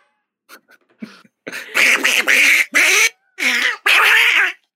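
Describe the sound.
A voice imitates a duck: a few soft, scattered sounds, then about five loud, nasal quacking bursts in a choppy rhythm, alone without speech.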